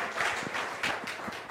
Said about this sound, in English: Thank you, guys. Give them a clap. Thank you, everyone.